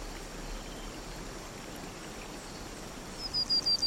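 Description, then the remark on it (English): Soft, steady outdoor ambience by a pond with a faint watery hiss, then a few high, bright chirps of blue and red birds flying above and circling the pond, in quick succession near the end, fairly clear against the background. “Notice the chirp of blue and red birds as they fly above and circle the pond.”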